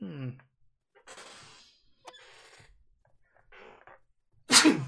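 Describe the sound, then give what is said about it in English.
A few sharp, breathy inhales build up before one loud, explosive sneeze bursts out near the end, with no talking around it. “As I sneeze.”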